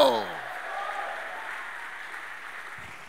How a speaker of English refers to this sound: Give God your loudest clap of praise in the building. Come on, go.